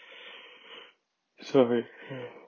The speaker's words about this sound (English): Sorry, I had a yawn.